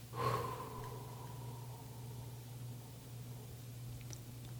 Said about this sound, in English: if the mind is giving you some grief, rather than breathe, is just start breathing out, you know, just start going.